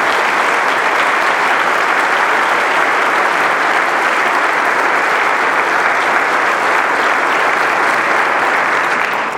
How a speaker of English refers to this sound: And let's give him a nice round of applause for his presence.